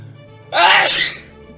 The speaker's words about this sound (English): One second, I'm going to sneeze.